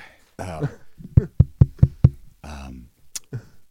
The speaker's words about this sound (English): I did knock on the door.